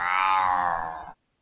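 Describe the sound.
One drawn-out cat meow, loud, holding a steady whining tone for about a second before cutting off abruptly into silence.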